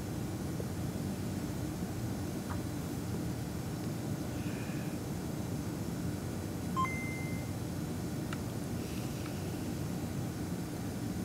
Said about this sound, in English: So that's CircuitPython running on a cartridge. Move the Adafruit logo around. Beep, very beep.